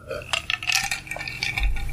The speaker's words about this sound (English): Pardon me from drinking some apple juice and ice through this very thin decorative glass that I got from my neighbor when she moved out.